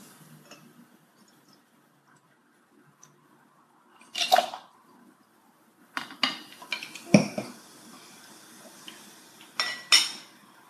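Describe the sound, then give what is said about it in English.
Glassware handling with no one speaking: a few sharp clinks and knocks spread across a quiet stretch, with a brief burst of splashy pouring in the middle as a whiskey champagne cocktail is poured over ice cubes and strawberries in a glass. “You pour over.”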